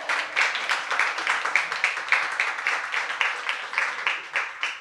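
A crowd applauds steadily for several seconds, many hands clapping into a dense, bright patter with small swells, and no one speaking over it.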